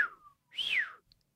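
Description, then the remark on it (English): A clear human whistle: a short falling note, a brief pause, then a louder tone that swoops up and glides back down, like a whistle of astonishment. No one speaks. “It'd be cool if we could get a sound of someone doing one of those astonished whistles and then just insert it.”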